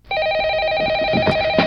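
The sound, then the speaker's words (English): A telephone rings with a steady, bright electronic tone, loud, sounding continuously for the whole moment with faint background noise beneath it and no one speaking. “Today is officially Answer the Phone Like Buddy the Elf Day.”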